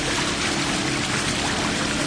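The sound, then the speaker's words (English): A long dugout boat slaps across the pale gray waters of the Rio Aurico in the last light of day, carrying passengers from the oil boom town of Durano to the Kofan village of the same name. A continuous wash of splashing and rushing water at an even loudness, with no voices. “A long dugout boat slaps across the Rio Aurico, the river of rich water, bringing us from the oil boom town of Durano to the Kofan village of the same name.”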